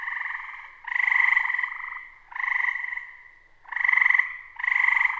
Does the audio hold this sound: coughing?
no